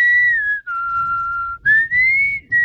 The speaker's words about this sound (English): I can just do the snapping. I could do the whistling